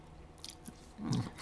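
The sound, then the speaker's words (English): A person imitates the lip smacking a partner makes first thing in the morning: three or four soft, wet smacks, irregularly spaced, with the last ones slightly fuller. No talking. “There might be, this sort of lip smacking.”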